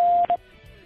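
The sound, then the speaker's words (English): A telephone tone from a phone party line's message-recording system sounds as a steady electronic beep, held briefly, then cut by a second short beep before fading into a faint low hum. No one speaks. “When done, hit the pound key so I can play it back to you for your approval.”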